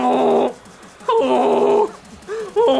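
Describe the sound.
A man honks like a goose while flapping his arms around like a bird: loud, nasal, buzzy calls, two drawn-out honks followed by a short one and another starting at the end, with brief gaps between.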